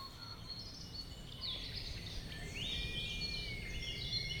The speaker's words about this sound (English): So I'm sitting in my college garden in Oxford, and I'm not sure if you can hear it, but there is a red kite whistling.